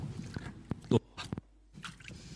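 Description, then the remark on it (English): Hands slosh and splash in a bucket of water as someone quickly washes their hands clean after digging, a few quick irregular splashes with a brief pause between bursts, moderately loud with no talking. “I've got a bucket of water over here.”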